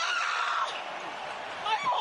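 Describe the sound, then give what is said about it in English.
A man lets out a loud, strained scream of pain in a played clip, held for about two seconds with a raspy, wavering tone that surges again near the end. “I almost just did the my hole part, then I'm like, wait, that scream was so great.”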